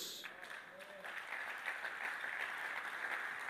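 A crowd applauds in a steady, dense wash of clapping that swells slightly and holds for several seconds, with no single claps standing out.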